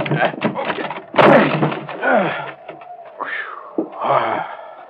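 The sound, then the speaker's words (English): A door on a scow is forced open with a loud crash, followed by long groaning creaks and a second sharp bump as it gives way. “Okay, Sherlock, help me bust this door.”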